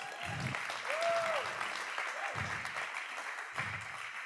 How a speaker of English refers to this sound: I love the vision of our church. Yeah, that's something worth clapping about.